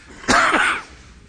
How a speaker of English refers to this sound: Heavenly Father, Lord God, I wish, Lord, you would take this cough away.